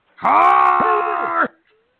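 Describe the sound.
A voice imitates a curling player's yell: one loud, drawn-out cry lasting over a second, strained and wavering in pitch with a few sharp bends, heard alone.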